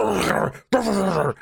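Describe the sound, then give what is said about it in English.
A hound gives two loud, drawn-out barks in quick succession, each a rough, moaning bay that slides downward in pitch, separated by a brief silence. “You hear one of the hounds bark.”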